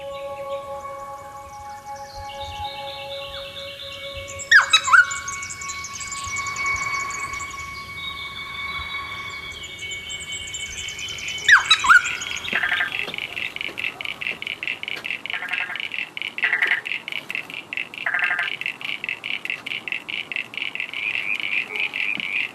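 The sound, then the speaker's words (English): Noisy friarbird calls: loud, harsh, nasal squawking phrases with two sharp bursts, followed by a steady buzzing chorus with repeated rasping notes. No one speaks. “Called a noisy fryer bird because it's noisy and it has a completely bald head.”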